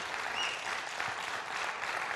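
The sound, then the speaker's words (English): An audience breaks into a steady round of applause, dense overlapping clapping sustained at an even level throughout, with no voices rising above it. “Give him a great round of applause today.”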